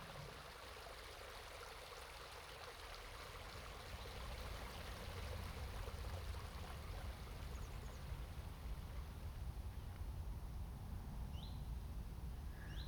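A steady rush of flowing stream water in a stone-walled woodland enclosure on an estate, growing slightly louder partway through, with a couple of faint, brief bird chirps near the end. No one speaks.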